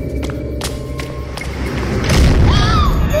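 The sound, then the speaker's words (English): Heavy doors swing shut over a deep, steady rumble, with a few sharp thuds early on, then a louder grinding swell and a thin metallic squeal as they close. “Doors, Dudley. They're closed.”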